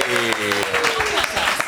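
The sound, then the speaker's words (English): TV presenters Rick Edwards and Emer Kenny clap for themselves after being introduced, a small group clapping steadily for under two seconds, loud and fairly dense, with a sustained voice or cheer sounding over the first part of the applause. “We're clapping ourselves.”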